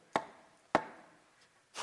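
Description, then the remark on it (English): Three sharp knocks on a door, slow and evenly spaced, with the final one louder and more drawn out, and nothing else sounding between them. “He knocked on the door.”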